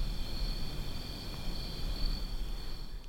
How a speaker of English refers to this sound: What are they, crickets or cicadas? It's a very pretty sound of an autumn evening here in West Hampton.